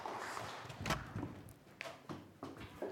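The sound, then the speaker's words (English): Footsteps thud down a staircase, about five muffled, fairly quiet steps in an uneven rhythm over a low background hum, with no one speaking. “Coming down the stairs now.”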